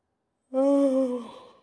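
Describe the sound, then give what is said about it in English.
A single voiced yawn: a breathy intake that swells into a droning tone, then slowly sinks in pitch and fades out after about a second. No talking. “Oh, why am I yawning? I have no reason for this.”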